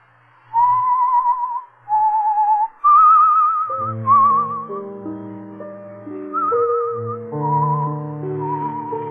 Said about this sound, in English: You whistle yourself like that very often? Yes. Especially when I'm working on a new composition.